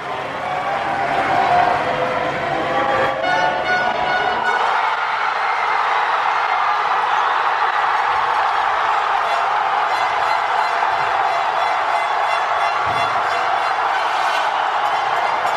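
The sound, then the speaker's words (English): A huge, continuous roar of cheering crowds fills the air, a dense wash of many voices shouting and celebrating at once, steady and loud throughout with a fuller low rumble in the first few seconds. “And it, you can actually feel, listen really carefully, and you'll hear the depth of the sound of like how much the entire city is cheering.”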